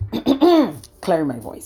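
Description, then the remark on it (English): A voice makes a two-part throat-clearing sound, more like a spoken "ahem" than a real rasp. It has two smooth, voiced syllables with falling pitch and a short pause between them. “clearing my throat.”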